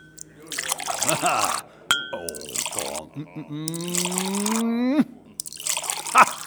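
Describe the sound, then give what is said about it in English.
Water splashes into four glasses one after another at a cafe in Paris, with one pour rising steadily in pitch as the glass fills; a light clink of glass rings out between pours. “Waiter, water, and 4 glasses.”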